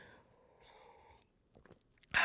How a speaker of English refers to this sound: I'm going to take a quick sip here.